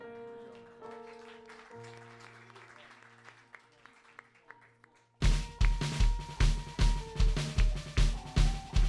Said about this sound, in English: Clap your hands this morning in church. Come on.